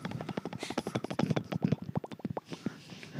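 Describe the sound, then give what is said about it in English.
A voice imitates a helicopter with a fast, steady train of percussive mouth pulses, like spinning rotor blades, fairly loud for about three seconds. “This is the chopper.”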